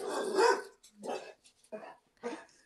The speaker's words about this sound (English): Sorry, my dog. Oh, you're okay. Hey. Sorry. Oh, you're okay.